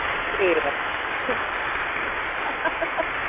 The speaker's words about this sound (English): Some applause for you. Do you like that?